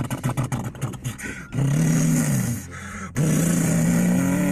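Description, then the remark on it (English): A truck engine chugs at a rough idle, then roars into a loud, sustained rev, drops briefly, and revs hard again, dominant with no talking. “That's my truck.”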